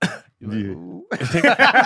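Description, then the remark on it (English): A short cough bursts out, then a drawn-out voiced groan, followed by another rough flurry of coughing noises, all loud and without any clear talking. “First cough.”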